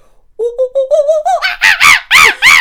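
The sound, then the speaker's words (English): A person imitates a monkey call: a quick run of short hoots climbing steadily in pitch, then breaking into four loud, shrill, harsh screeches. “I'm good at making animal noises. Do you want to hear my monkey?”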